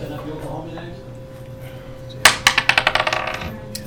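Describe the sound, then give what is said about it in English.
Dice rolled to hit in a tabletop game clatter across a table: a sharp first hit followed by a quick run of about ten bouncing clicks that speed up and fade away, over a low, steady background hum. “Roll to hit.”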